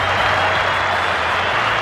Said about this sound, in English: Very important innings for Australia. Nice round of applause there for the man with the big tash these days.